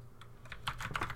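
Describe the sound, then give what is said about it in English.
Quick, light keystrokes clatter on a computer keyboard in an uneven burst as someone types a website address to look up a movie theater, fairly quiet, with a low steady hum underneath and no talking. “Am I typing in the wrong website?”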